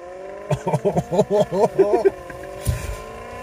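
A voice imitates a Maserati Gran Turismo engine revving with a quick run of about eight rising-and-falling vroom bursts, fairly loud, followed by a brief low thump.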